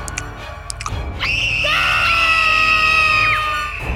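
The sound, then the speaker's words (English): A crowd screams in panic: several shrill, sustained voices overlap in a loud wail for about two seconds, rising out of a brief rumble of commotion and then tapering off. “Pandemonium from the crowd, freezing, collapsing, crying, anything but a helpful response, since what could possibly help?”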